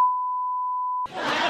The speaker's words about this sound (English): Did you beep it out? What did you beep it out for?